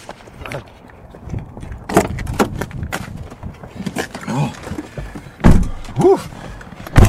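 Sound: getting into a car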